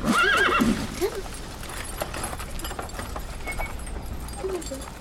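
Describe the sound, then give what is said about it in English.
A horse lets out a loud, wavering whinny at the start, followed by a steady clip-clop of hooves that carries on to the end, with a faint snort near the close. “would you be so kind as to tether the horses?”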